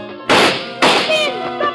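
Two loud, sharp gunshots about half a second apart, each bursting in suddenly and ringing out briefly, with faint tonal sounds lingering underneath.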